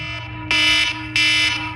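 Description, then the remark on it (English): A harsh electronic wake-up alarm buzzer blares in loud, regular pulses, two long bursts separated by a short gap, with a steady low hum underneath. No one speaks. “In fact, I think one of the most irritating alarms is this one right here.”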